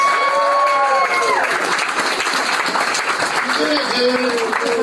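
A crowd applauds steadily and loudly throughout, dense clapping filling the whole stretch, with rising whoops and shouted cheers cutting through at the start and again near the end.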